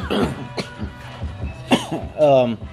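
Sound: coughing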